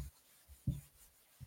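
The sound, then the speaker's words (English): Faint, dry rubbing of vine charcoal dragged sideways across a sheet of paper, drawn with the side of the charcoal to cover the entire sheet, a soft papery hiss broken by a few muffled bumps as the strokes change, with no voices. “It's very efficient, and the first thing I do is I cover the entire sheet of paper with vine charcoal, drawing with the side.”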